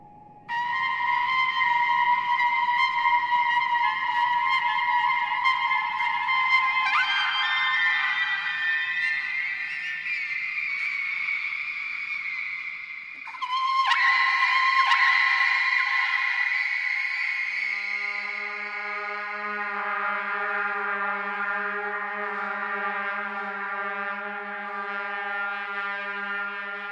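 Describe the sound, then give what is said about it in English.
Humpback whale song: long, sustained tonal calls that slide and shift in pitch, with rich harmonic overtones, a brief gap midway, then lower, steady moaning tones. No talking. “And this, you could follow any singing whale, and you would find the song was evolving.”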